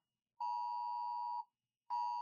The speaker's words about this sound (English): Oh, this is that thing, isn't it? Oh, the test alert.